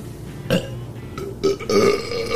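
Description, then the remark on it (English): A woman lets out a few throaty burps in quick succession, the last one longer and deeper, with no talking around them. “I do want to hear … burp.”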